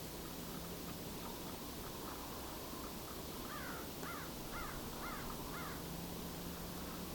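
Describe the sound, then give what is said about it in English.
A crow caws several times in a steady series of harsh calls over a constant hiss of outdoor background noise. “A crow in the background.”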